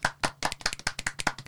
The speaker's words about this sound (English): Everyone clap for him, please.